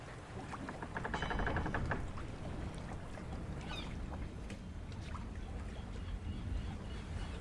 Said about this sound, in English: Turning towards the water, Tony thought he heard a wave crashing.